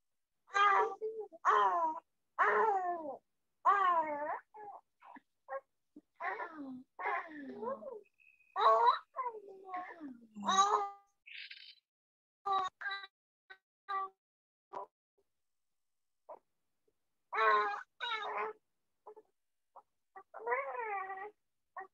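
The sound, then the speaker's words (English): A two-month-old baby girl coos and babbles with her mother in a string of short, high, wavering vocal sounds with brief pauses between them, clear, with no adult speech over it. “No, that's my newborn. Oh, she's man. Just cooing with mom.”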